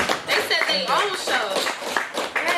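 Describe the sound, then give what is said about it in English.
Several pairs of hands clap in a quick, scattered burst for a group of comedians, with voices talking and cheering over the applause throughout. “First of all, I want to clap it up for y'all. Come on, clap it up.”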